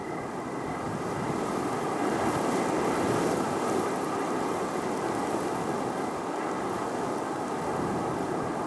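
A steady, roaring windstorm fills the whole clip, a dense rushing noise that swells slightly and holds loud throughout, with no voices.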